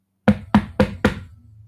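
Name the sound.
knocking on a door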